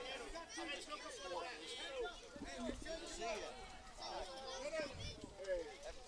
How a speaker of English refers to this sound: Great crowd on hand here at McFarland Field. Yeah, I like the way the parents are actually kind of lining the left field line there. Everybody's on the fence. We do have some bleachers on the first base side that have a lot of people on them.